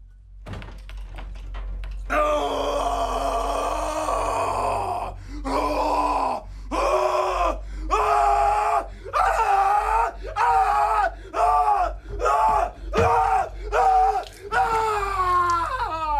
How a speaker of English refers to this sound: it's like there's a man in physical, emotional anguish screaming